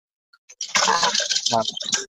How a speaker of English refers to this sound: I'm doing dishes.